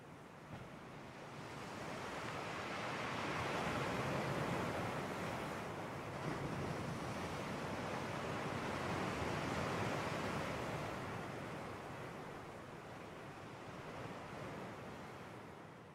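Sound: ocean waves breaking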